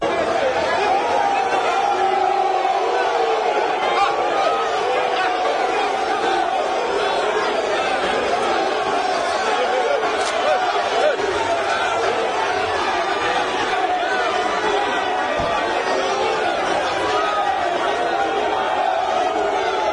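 A dense crowd of residents shouts and jeers continuously at their Member of Parliament for Swami, Osei Chiemen Sabunsu, and the MCE, many voices overlapping into a loud, steady roar of agitated cries and hoots with no pauses for twenty seconds.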